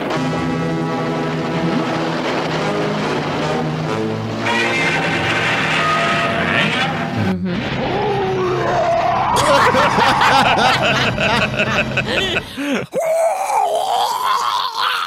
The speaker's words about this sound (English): Let's compare Godzilla's roar in this series to some of his classic roars. So I got two of the classic roars, and then the third one. Let's see if you can tell the difference. Here it is.